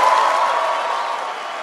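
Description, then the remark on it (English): A large audience applauds steadily, a dense, even wash of clapping with a faint murmur of crowd voices, holding at a fairly loud level throughout without a break. “If you can watch this video on YouTube, you can see he just consumes the applause, his body metabolizing it into more and more bad ideas.”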